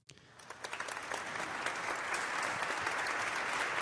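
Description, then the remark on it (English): Applause for doctors from a crowd starts with a few scattered claps and quickly swells into steady, dense clapping that holds at a full, even level to the end, with no voices over it. “So the doctors, man, applaud it.”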